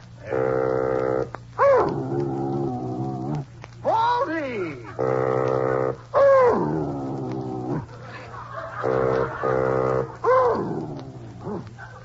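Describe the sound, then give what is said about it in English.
A dog, Baldy, howls and yowls along with sustained bassoon notes, its wavering, sliding cries alternating with the reedy tones in a steady back-and-forth, fairly loud over a low constant hum. “Well, Baldy, you can sing. You're a singing dog.”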